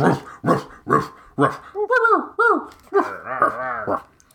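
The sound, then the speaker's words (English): A quick run of sharp, loud barks gives way to overlapping high whines and whimpers as pedigreed dogs at a Kennel Club dog show at Gotham Arena run wild, following an ultrasonic dog whistle, several excited dogs yelping at once. “the dogs are running wild.”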